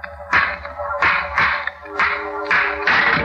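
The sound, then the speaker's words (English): A stone strikes an old, rusty lock on a tomb door again and again, smashing it, about six sharp blows in an uneven rhythm, each with a brief metallic ring. No one speaks. “I picked up a stone.”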